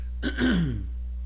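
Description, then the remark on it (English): A single throat clearing with a short coughing rasp from a person who has a cough, lasting about half a second before fading into quiet room hum. No talking alongside it. “Sorry, I got a cough today.”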